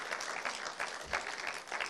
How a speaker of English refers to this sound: Because there's a couple over here that are taking this thing too far. Amen? Come on, let's give them a huge round of applause. Let's give them a huge round of applause.